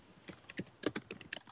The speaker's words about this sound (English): I can hear someone typing. Apologies.